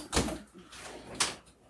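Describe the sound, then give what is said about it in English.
A door opens as someone tries to sneak out while keeping a dog from coming in, with a soft thud and rustle, followed about a second later by a sharper latch-like clack, with no voices. “Don't let him in here. Like, try and sneak out of the door.”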